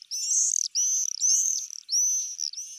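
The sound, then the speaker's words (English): Shrill, high-pitched bird calls ring out in four drawn-out screeching phrases, each ending in a quick rattling flutter, steady with no voices around. “The enthusiasm stretches from the red-breasted robins whose image adorns Christmas cards, to the fighter jet-like swifts whose screams herald the start of summer.”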